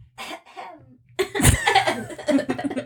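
human body sound, cough

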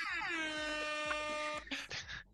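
sound effect, air horn sound effect

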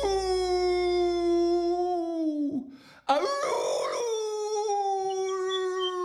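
animal, dog howling

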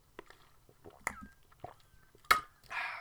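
human body sound, sipping water

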